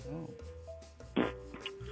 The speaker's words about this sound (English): Just fart on the phone. We heard that, sir.